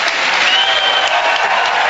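A large, packed auditorium crowd applauds loudly and steadily in answer to a question about immigration, many hands clapping together into a dense, even roar of claps that holds for the whole two seconds with no voices.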